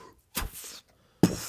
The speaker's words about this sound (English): Oh, the door's closing. That's fine.